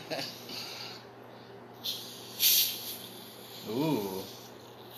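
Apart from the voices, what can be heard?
carbonated soda fizzing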